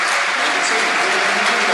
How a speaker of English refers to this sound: We'll make the substitution. Fred's coming into the game. Who's coming out there? Is Sean Ferguson? It is. Sean Ferguson coming out. So good applause. On the 65th minute, and in's going to come Fred.